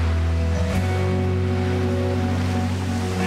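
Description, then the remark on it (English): A loud, steady roar of rough sea and wind fills the whole stretch, with a deep, droning rumble underneath and a brief surge partway through; no one speaks. “The wind started howling and the waves were really big when they saw someone walking across the water.”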